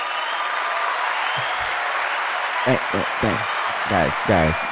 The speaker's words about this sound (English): I really did think that the crowd's feeling the state. I mean, you heard that first round of applause. You guys loving us out there?